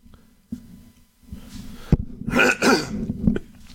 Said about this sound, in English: The SEC, he had to clear his throat for it.